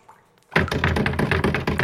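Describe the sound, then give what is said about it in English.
After a brief hush, someone jiggles the locked back door to the cave where Elon's server is, producing a loud burst of rapid rattling and knocking that continues steadily to the end. “Oh, but Elon's locked me out!”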